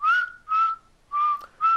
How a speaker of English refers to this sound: No, I can whistle, like, the song. Like, you're going to be like, are they playing the song right now?